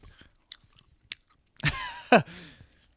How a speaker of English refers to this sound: He's still chewing. He has not talked because he is still chewing. It took a lot of chews.